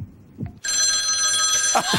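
A telephone rings loudly and steadily for over a second as a random call is placed for a $10,000 question, its bright, buzzing bell tones starting abruptly after a brief quiet moment, with faint low thumps underneath.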